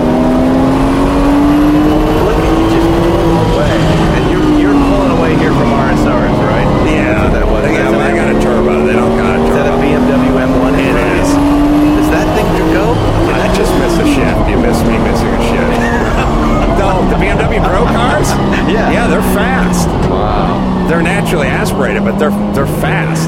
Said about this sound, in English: Now the turbo kick in here. Wow, there he goes. He's passing cars. That is so cool. It's such a cool car.